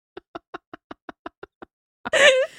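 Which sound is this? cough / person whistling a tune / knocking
knocking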